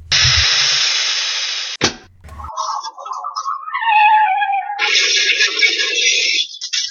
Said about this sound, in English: And there it is, the sound of the car crash, the collision, if you will, of Christianity and Islam, or Chrislam.